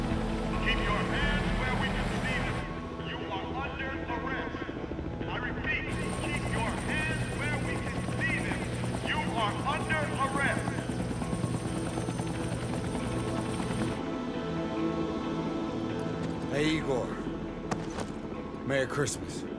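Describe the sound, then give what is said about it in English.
Steady, loud rotor noise from several helicopters filming a stunt woman on top of a car fills the scene, thrumming continuously beneath a dense, layered mix of other sounds and indistinct voices. “When I was shooting this, the downdraft from the helicopters was so great She was in constant danger of being blown off the top of that car.”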